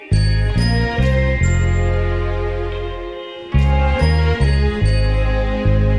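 A slow soul ballad intro: warm sustained keyboard chords over a deep bass, with bright chime-like notes ringing on top and a brief pause before the chords return. No singing yet.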